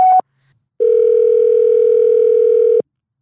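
voicemail tone

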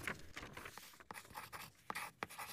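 pen writing on paper

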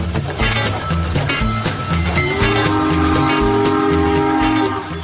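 train with horn

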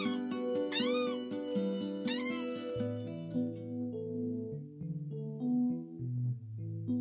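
kittens meowing

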